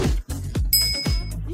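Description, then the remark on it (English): A single bright, high notification-style bell ding, the subscribe-bell cue in an OWWR (Old Westbury Web Radio) station promo, rings out over a pulsing, bass-heavy beat, holding for about half a second before cutting off. “Subscribe to us at OWWR and don't forget to hit that bell.”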